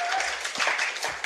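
A convention audience applauds a guest of honour: a dense, steady wash of many hands clapping at once, fairly loud and continuous throughout the short burst, with faint voices murmuring underneath.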